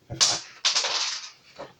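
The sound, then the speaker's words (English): Dice rolled for an attack in a tabletop roleplaying game clatter and roll across a hard surface in two quick bursts, the second a longer rattling tumble, fairly loud, with a faint tap near the end. “That's a reroll. 28. Sure. Where's the dice?”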